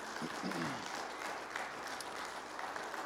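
An audience gives God a hand clap of praise in an evening service, dense steady clapping filling the whole clip at an even level, with a brief voice-like tone rising under it near the start.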